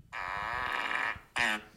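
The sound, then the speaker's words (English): A buzzy, sustained fart sound effect called "Fart Salute", played from a phone held up to the mic, lasting about a second, followed by a shorter, sharper blast after a brief pause, sounding like it's played through a small speaker. “This one's called Fart Salute.”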